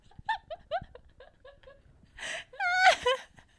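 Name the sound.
deep breath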